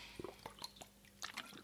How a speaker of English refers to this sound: Excuse me, I'll just have a sip of this water.